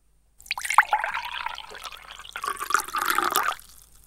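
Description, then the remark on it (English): Liquid is poured steadily into a container for about three seconds as a second pour, a bubbling, splashing stream that rises in pitch slightly as it fills, then stops abruptly. “Prepare to listen to the second pour.”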